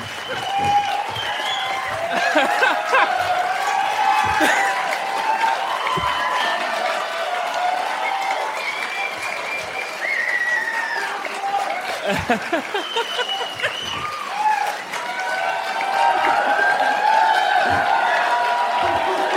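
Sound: audience applause and cheering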